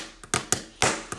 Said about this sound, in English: I had to get some pens to be my drumstick.